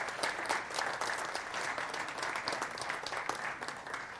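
A large church audience applauds steadily and warmly for a new pastor joining the paid staff, dense overlapping claps at an even volume for several seconds without a break.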